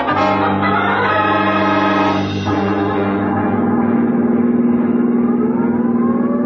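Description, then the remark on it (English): A loud police car siren wails steadily over the car's roaring engine, which revs and drones throughout, with no voices. “It's your show from here on in. Sirens included.”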